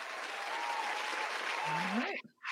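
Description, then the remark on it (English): A crowd claps in a dense, steady wash of many hands for about two seconds, with a short rising voice or whoop near the end before the applause cuts off abruptly. “I don't know if you guys can hear the claps out there, but I hear them in my headphones.”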